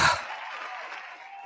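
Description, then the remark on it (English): A brief burst of applause directed at Tedros, a dense, steady patter of many hands clapping at moderate loudness, starting with a sharper onset and then holding evenly for about a second and a half. “He deserves some applause this morning.”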